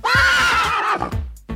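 A horse whinnies loudly, one long, shrill, quavering neigh that wavers in pitch and trails off, followed by a brief snort at the end.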